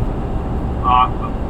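Steady low rumble of road noise inside a moving truck on I-80 in Illinois, heard through a phone line, with a brief faint tonal chirp partway through.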